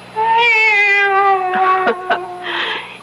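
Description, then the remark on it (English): A female cat lets out a long, drawn-out meow, loud, its pitch wavering before trailing into a couple of shorter strained cries. No one speaks. “It's the cat. She's back.”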